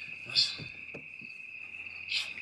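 Crickets chirp in a steady, unbroken trill against an otherwise quiet night, soft, with a couple of faint breathy rustles passing through.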